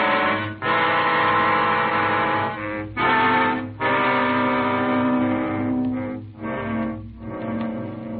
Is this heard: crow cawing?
no